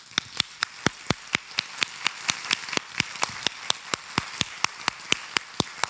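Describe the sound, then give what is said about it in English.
A group claps together in praise, as a way of rejoicing, in a steady, even rhythm, about four crisp claps per second, continuing without pause. No one speaks. “It means to clap. Let's all try that.”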